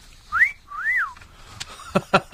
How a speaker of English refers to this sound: I'm not well. I'm not on tablets. Listen, if I was on tablets, I wouldn't be whistling at you, would I?